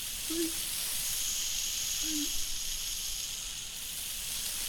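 A steady, bright spraying hiss runs unbroken through the whole stretch, with two brief low hums breaking in underneath early on and midway.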